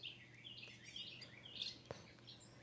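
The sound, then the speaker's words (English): Several birds chirp and warble in overlapping high-pitched phrases outside an open window facing woods, a steady, fairly soft chorus with a faint low hum underneath and no one talking. “But if you listen to bird song, it's a very peaceful practice.”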